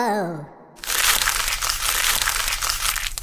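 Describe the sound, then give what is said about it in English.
A short sighing vocal sound, then loud crumpling of a paper letter that crackles and crinkles steadily for a couple of seconds, with no pauses; the letter is crumpled up after a spelling mistake. “So then I crumpled up the paper, and now I'm writing it again.”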